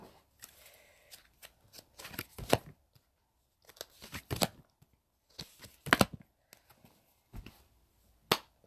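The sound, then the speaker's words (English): Tarot cards being shuffled in quick, irregular bursts of riffling and snapping, with short pauses between, and no one talking. “We'll do one more shuffle and I'm going to pull three cards.”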